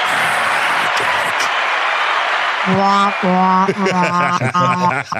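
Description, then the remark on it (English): A burst of steady clapping applause fills the first half, a dense hiss of many hands, then gives way to voices and tonal sounds layered over the fading applause. “I've got an applause one.”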